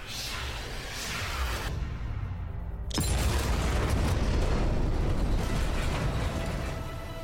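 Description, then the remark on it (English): A rushing, roaring whoosh builds, dips briefly, then a sharp blast hits at about three seconds, followed by a sustained heavy rumble as fired air missiles explode and blow open a closed airlock door. No voices. “Firing air missiles!”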